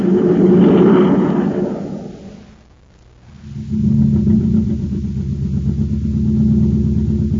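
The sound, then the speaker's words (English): A surface car engine running on ordinary fuel runs with a steady, loud low rumble, dips away briefly partway through, then returns and keeps droning evenly. No one speaks. “what kind of jet jalopy are we riding in, Captain Tufeld? We'll never get to Terra City at this speed.”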